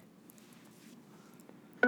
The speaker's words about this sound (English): I say, turn that Bluetooth all the way up until I can hear it beep. That means it's at maximum volume.